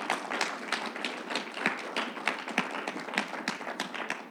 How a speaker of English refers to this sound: Let's give this word a hand clap and let's pray it out.